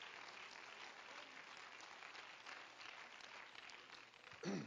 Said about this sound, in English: Would you clap your hands to him before you're seated?